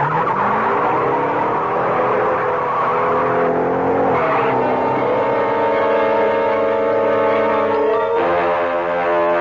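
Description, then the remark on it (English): A getaway car's engine revs hard and roars off, its loud droning pitch climbing and shifting with gear changes, tires squealing, with no voices over it. “Get behind the wheel, Zipper.”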